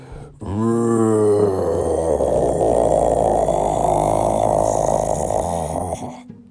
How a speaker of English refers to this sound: And then all of a sudden, the pavement between the two arms lifted up into the air, revealing the head of a giant beast who roared so loudly that the windows in the nearby skyscrapers broke, glass shooting everywhere onto the streets.